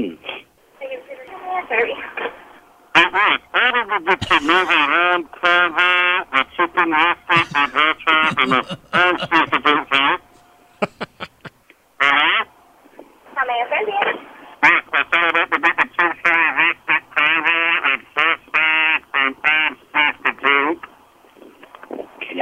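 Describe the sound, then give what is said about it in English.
A kazoo spoken into while ordering at a fast-food drive-thru buzzes in jabbering, speech-like bursts, muffled and tinny like a garbled drive-thru speaker, with a short pause midway before the nasal chatter resumes, loud throughout. “If they start to question you and tell you to pull around, ask them if everything's working, and maybe even don't use the kazoo for a second or two so that it sounds like that maybe it's starting to work again.”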